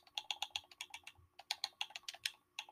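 Rapid, frantic button clicking as someone furiously types on an Xbox controller, entering "Family Guy Peter skydiving", a steady stream of crisp taps with no talking.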